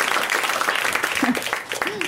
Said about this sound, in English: Because if you come out separate, you get your own claps, you know?